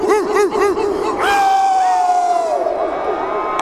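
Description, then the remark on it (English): A huge crowd of Eagles football fans at a celebration of the team's first championship trophy barks like dogs in unison, several quick rhythmic woofs, then breaks into a loud sustained roar of yelling and cheering. The barking is human voices imitating dogs. “Center of the football universe, let me hear you bark a little.”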